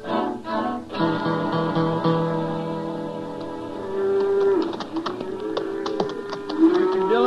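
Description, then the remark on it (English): A herd of cattle mooing, several long, low overlapping bellows sustained throughout, fairly loud, with some light tapping and clattering in the second half. “Never get to Dodge if we stop in Cali ever heard of cows we come across.”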